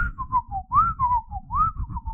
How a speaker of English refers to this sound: It like knew the, you could whistle.